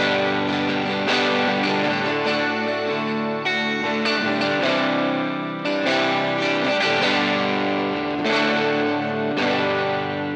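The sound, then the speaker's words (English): An electric guitar on its bridge single-coil pickup plays a few loud, bright strummed chords in steady succession, its tone colored by distortion and a shimmering chorus-like effect, with no voices. “Let's put the bridge single coil.”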